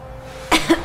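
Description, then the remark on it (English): Two quick coughs close together near the end, preceded by a moment of quiet room tone; the first is a harsh, breathy burst and the second slightly shorter. “Cough twice for yes.”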